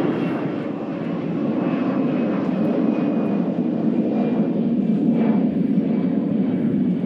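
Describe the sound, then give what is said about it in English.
A loud, steady airplane roar passes overhead, a dense low rumble with a faint whine on top that holds throughout without any talking. “Plane. Everybody, pause for station identification.”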